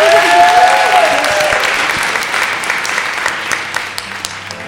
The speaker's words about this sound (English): And please give yourselves a round of applause for being a wonderful audience.